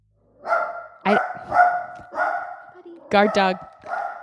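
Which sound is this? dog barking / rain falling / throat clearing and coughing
dog barking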